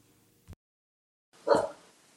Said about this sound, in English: I think I have a dog barking. I'm surprised. I have five, so I'm surprised one, at least one.